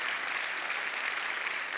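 Steady audience applause, a dense wash of many hands clapping at an even, fairly loud level throughout, with no voices standing out.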